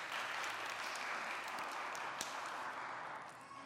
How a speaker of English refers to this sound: Somebody on Thursday returned home to the Father. I knew you'd clap.